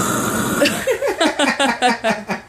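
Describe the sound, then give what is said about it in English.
Someone imitates snoring with a quick series of rough, rhythmic vocal snorts, about a dozen short pulses in a row, fairly loud and with no other talking. “I can hear you snoring even more.”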